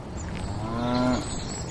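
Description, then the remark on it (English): A single cow moos once, a low, steady harmonic call that swells and then cuts off, clear over a faint background hiss. “These were not your average contented cows.”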